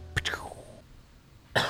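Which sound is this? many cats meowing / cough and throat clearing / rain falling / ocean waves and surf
cough and throat clearing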